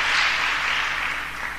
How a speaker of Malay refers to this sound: Amin. Haleluya. Tepuk tangan kepada Tuhan.